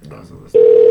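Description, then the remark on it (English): Murmured voices give way abruptly to a loud, steady electronic telephone ringing tone, the ringback heard while a call to Rolling Stone is being transferred, held unbroken to the end. “It sounded like he was transferring the call.”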